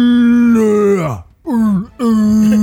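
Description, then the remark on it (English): A voice imitates a creature behind a wall screaming as it is hit by arrows: three loud, rich wailing cries, the first sliding downward in pitch, the second dipping and rising, and the last held steady. “And you hear the scream out from the creature behind the wall.”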